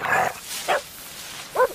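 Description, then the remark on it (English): A dog barks three times by a garden hedge, with uneven pauses between the sharp, fairly loud yaps and no talking alongside them. “Dog, get away from that hedge.”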